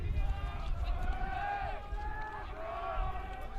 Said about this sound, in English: And you can hear that wind whipping in our crowd microphone. And the wind blowing from right field to left. More southwest than south right now.